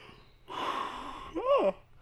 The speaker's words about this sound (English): you weren't yawning at all until we started the podcast.